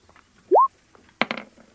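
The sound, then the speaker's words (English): Two hit dice are rolled in a tabletop game, clattering across a table in a quick burst of three or four sharp clicks, preceded by a short, loud rising squeak, with no one talking. “I'll roll two hit dice.”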